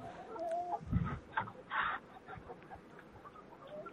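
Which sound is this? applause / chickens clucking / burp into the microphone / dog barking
chickens clucking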